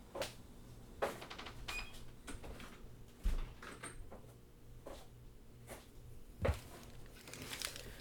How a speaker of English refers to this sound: One sec. I'm going to close my door.